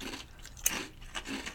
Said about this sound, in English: So at least a kettle chip. Yeah. Good crunch, like a kettle chip.